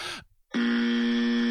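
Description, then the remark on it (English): A person imitates a buzzer with a loud, steady, harsh drone that holds one low pitch for about a second, after a short sliding vocal sound and a brief silence. “Let's hear your best buzzer sound.”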